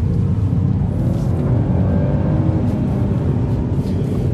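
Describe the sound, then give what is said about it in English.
A Mini Cooper's engine rumbles loud throughout, its pitch climbing steadily as it revs up, with a deep, continuous growl and no voices over it. “But I also find this car drives quite nice. And it makes a good sound.”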